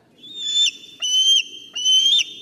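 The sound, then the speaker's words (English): A bald eagle calls in three high, thin whistled bursts, each with a quavering, chittering edge, heard alone over a faint low background rumble. “Benjamin Franklin didn't want this bird to be our national bird because these birds steal prey from other animals by chasing them down”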